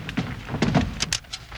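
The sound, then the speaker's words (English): A table drawer slides open with a quick run of wooden scrapes, rattles and soft knocks, moderately loud, over about a second and a half with no voices. “Hey, there's a drawer on this table. Maybe it's here.”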